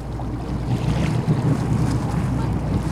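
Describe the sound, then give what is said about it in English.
A white boat with room for about 70 people moves across open water on Cayuga Lake, with a steady low engine rumble beneath gusting wind buffeting the microphone and waves splashing continuously along the hull. “Today, we're hopping aboard the MV Teal, a white boat with room for about 70 people.”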